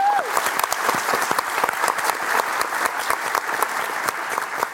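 An audience claps steadily for several seconds to welcome the day's guest up to the stage, a dense patter of many hands with a few brief whoops rising at the start, with no speech over it.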